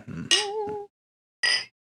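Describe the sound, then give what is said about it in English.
Two glass clinks as glasses of a watermelon and mint drink are touched in a toast: a bright chime that rings briefly with a clear tone, then a second, shorter clink after a pause, over a faint low murmur. “I'll transitively clink your glasses.”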